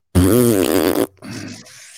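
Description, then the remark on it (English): A loud, buzzy fart sound effect lasting about a second, with a wobbling low pitch, followed by a quieter sputtering tail that fades out. “They might as well end everything she says with a giant fart.”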